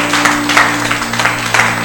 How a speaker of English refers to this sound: Clap for me. Clap for me. And let the tension go down.